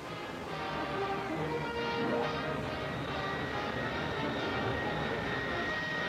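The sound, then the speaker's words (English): A four-jet, 60-passenger jet airliner carrying airmail roars steadily overhead as it zooms over Idlewild Airport in New York, a loud, broad engine rumble with a whining high tone that swells slightly and holds throughout, with no talking. “Nine minutes later, she zooms over Idlewild Airport, cutting in half previous airline records for the 370-mile trip.”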